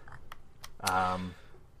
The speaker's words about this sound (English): Do some typing and not just clicking because it might be a broken review. It is a broken review.